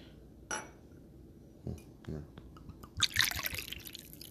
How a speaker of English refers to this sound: I'm going to go ahead and pour up another bev with my people. I appreciate y'all so much. Again, it's just a little bit of Hennessy.